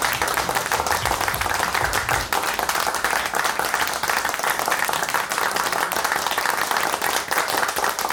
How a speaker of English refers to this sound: Woo, applause